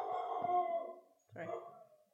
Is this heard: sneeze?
no